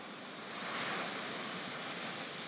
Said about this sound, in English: And you get to the shore where the ocean meets the sand. And you see little waves coming up and down, up and down.